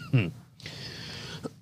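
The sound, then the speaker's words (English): A single cough: a short voiced burst followed by a long, raspy, breathy rush of air, ending with a small catch in the throat. “Excuse me. It's coughing so good.”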